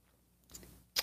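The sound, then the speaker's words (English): A quiet slurp of someone sipping coffee from a mug, with a soft first sip followed by a sharper, louder one at the end; no talking. “It's called the simultaneous sip, and watch it do its magic now.”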